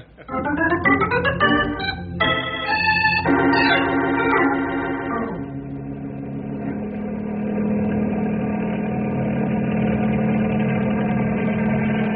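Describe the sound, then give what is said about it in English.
A helicopter engine runs loudly, its whining tones stepping and shifting in pitch for the first few seconds before settling into a steady, even drone with no voices. The helicopter flies back and forth over the same area at night to mix warm ground air with cold night air. “Using helicopter to mix warm ground air with cold night air, good idea.”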